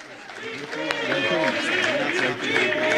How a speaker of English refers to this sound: Vivek said he thinks everybody running against Trump, Republican candidate, should all drop out and just give the nomination to him. This gets the Trump crowd chanting that he should be the vice president.